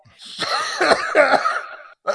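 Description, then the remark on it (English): A raspy, wheezy cough, a few harsh bursts run together over about two seconds, followed by a short pause and another breathy start. “C, as in coughing.”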